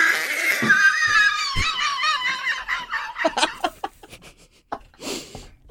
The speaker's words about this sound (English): Oh my goodness. Sorry about that. Did you just snort? Yeah. I'm part pig.